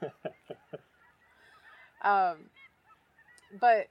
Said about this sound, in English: we're in fall migration right now, and so we're hearing tons of geese fly over, and most of them are going to be cacklers and canadas.